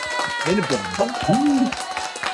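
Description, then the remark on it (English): A crowd claps steadily and cheers to welcome two guests from Sir John, with loud whoops and rising, wavering shouts over a dense patter of hand claps that keeps going throughout. “We brought the crowd for you, boys.”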